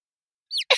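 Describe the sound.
A person mimics a bird with two quick, high chirps into the microphone, the second a bit louder and breathier, after a moment of silence.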